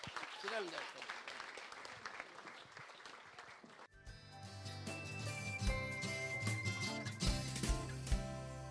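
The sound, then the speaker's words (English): Audience applause for the winner of a competition at its ceremony, a dense crackle of many hands clapping steadily, fills the first few seconds before giving way to loud, bright music with sustained tones and a steady beat. “A round of applause again for the winner,”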